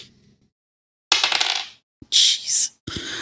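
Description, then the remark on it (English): Ten-sided dice clatter and rattle across a table in a quick burst as damage is rolled in a tabletop game, then a second d10 roll follows with a brighter skittering tumble before settling. Fairly loud, with no talking. “And then just roll a second d10 and add that.”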